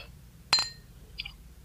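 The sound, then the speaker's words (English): Glasses clink together in a toast: one bright, ringing clink that lingers briefly, followed by a softer second tap, with no talking over a low background hum. “That's community. Cheers.”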